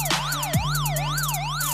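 A loud ambulance siren sound effect yelps rapidly, its pitch sweeping up and down in quick repeated cycles over a low steady hum, with no voices present.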